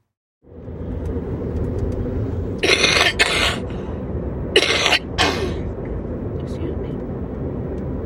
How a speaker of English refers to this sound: Excuse me. You got grandma's cough.